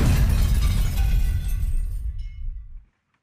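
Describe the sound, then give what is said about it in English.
A car drives off a cliff and explodes in a loud blast with a deep rumbling roar and crackling debris, sustaining for nearly three seconds before abruptly falling silent. No one speaks. “The car soars off the cliff and explodes.”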